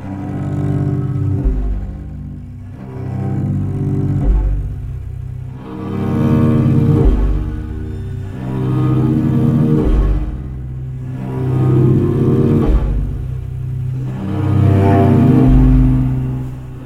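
A deep, growly cello plays long bowed notes that swell and fade roughly every two seconds, rich with buzzing low overtones and moderately loud throughout, with no voices.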